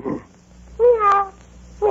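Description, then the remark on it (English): A person imitates a cat, giving repeated drawn-out meows with a rising and falling pitch, fairly loud, with short pauses between them. “Meow. Meow. Meow. Now what are you doing? I'm taking a cat nap.”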